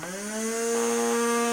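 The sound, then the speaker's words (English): A vacuum cleaner motor spins up, its whine rising in pitch over the first moment, then settles into a loud, steady droning hum with a hissy rush of air and no talking. “I'm just gonna vacuum this motherfucker up now.”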